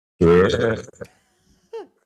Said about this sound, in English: Burp coming.